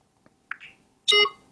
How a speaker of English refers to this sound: There we go. We heard a beep and it told us it's now scanning.